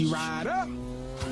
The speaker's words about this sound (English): Ride or Die. Oh, my God. I haven't seen this game. It's like a Nintendo 64 game. For switching lanes and skidding around corners, check this out.